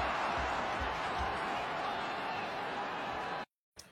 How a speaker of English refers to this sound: Listen to that crowd get jacked up when he's going off the field and then coming back on the sideline, man.